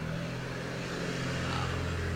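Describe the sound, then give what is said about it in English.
A truck rumbles by outside a house, its deep engine drone steady and fairly loud, with a broad road-noise hiss that swells slightly partway through. No one speaks. “That's just a truck going by my house.”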